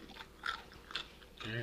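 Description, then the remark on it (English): Loud crunchy chewing of a pickle: four crisp, wet crunches about half a second apart, ending with a short murmured hum from the chewer. “I don't know why I got to chew like that.”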